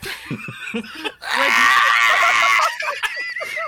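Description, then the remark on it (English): A person imitates an agonized yell, one loud, strained, sustained cry lasting over a second, with brief laughter and voices just before and after. “I'm just picturing that yell magnified by 1,000 layered.”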